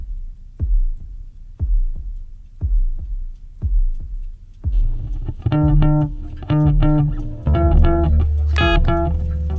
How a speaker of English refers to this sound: I'm hearing a faint heartbeat.